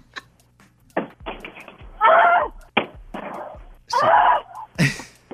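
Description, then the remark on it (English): A television is knocked over and then beaten on its backside: loud, irregular thuds and bangs, broken up by a couple of sharp cries or shouts. “She knocked it over immediately, then just started beating on the backside of it.”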